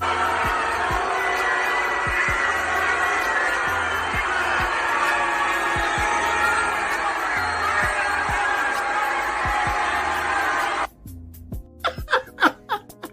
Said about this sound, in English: on out there to the Astro World Series parade. And baby, everybody was having a funky good time, honey. They was throwing candy and they was drinking beer and just celebrate, honey. But when Fleddy Cruz passed by, honey, they started booing his ass.